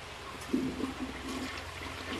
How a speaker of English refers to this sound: Sir, would you please stop flushing because you're going to overflow? What do you mean I'm going to overflow? It's already overflowing. My socks are wet. I don't understand. Why are you still flushing if it's overflowing?